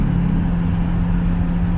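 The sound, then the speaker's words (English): A car engine rumbles steadily with a low droning hum as a car drives past without stopping, holding an even, fairly loud level throughout with no voices present. “These cars come up here and they don't stop. They keep it moving and keep on going.”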